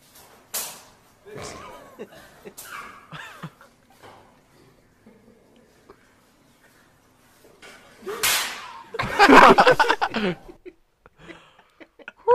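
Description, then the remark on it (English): A loud, sharp slap in a fight video cracks out after a quieter stretch, followed by a burst of commotion; earlier, a couple of fainter smacks and scattered voices and chuckles can be heard. “Yeah, dude, that one you could fucking like feel like it guy comes knows through. How to slap.”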